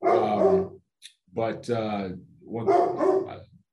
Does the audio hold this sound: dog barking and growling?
yes